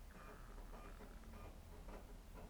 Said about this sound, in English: Thank you, Xbox. Sounds like a printer.